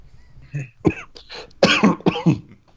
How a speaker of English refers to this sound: I have that kind of thing, that opera cough, you know, where I don't really have to cough, but it's a quiet room, so all of a sudden I start coughing and, like, an opera house. I've got that fucking condition.